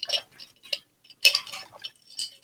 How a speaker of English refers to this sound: Can you hear my water? Yeah. Ooh. Oh, yours is way better. It's glass.